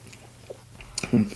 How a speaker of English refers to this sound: Anyway, just taking a sip of whiskey there.